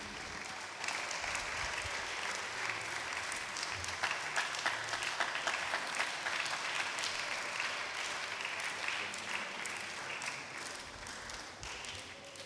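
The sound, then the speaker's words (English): An audience applauds steadily for over ten seconds to welcome Reverend Dr. Fred Deegbe, a dense wash of many hands clapping at once, sustained and fairly loud with no break. “With a round of applause, Reverend Dr. Fred Deegbe.”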